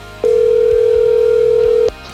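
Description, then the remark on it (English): A phone line rings on the caller's end during a live radio call from a studio: one long, steady electronic ring tone lasting under two seconds, loud and clear, with no voices over it. “Ooh, it's ringing, man. It's ringing.”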